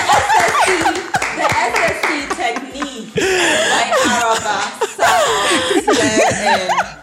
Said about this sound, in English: Can we clap for Araba? Can we clap?